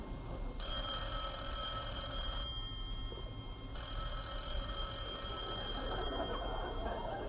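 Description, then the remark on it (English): A telephone in Jack Benny's den at his house in Beverly Hills rings twice in long, steady bursts, each about two seconds, separated by a pause, over a faint background hiss with no one speaking. “Rochester, the phone.”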